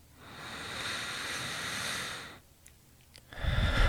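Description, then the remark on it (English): A long, airy breath drawn in through the nose, a short quiet pause, then a heavier, rougher breath out through the mouth, taken as a deep relaxation breath. No one speaks. “Just breathing in through the nose, out through the mouth.”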